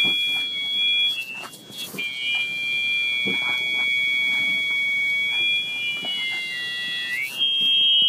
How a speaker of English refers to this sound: This is the sound of my sister June's hearing aid when it is out of her ear.